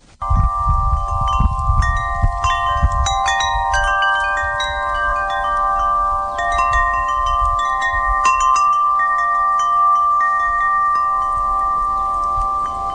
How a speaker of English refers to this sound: And then we have a wind chime.